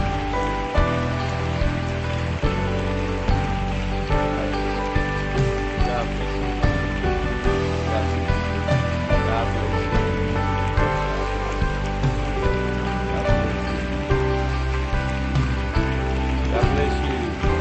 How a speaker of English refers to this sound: Come on, church, keep clapping. God bless you. People are coming to Jesus.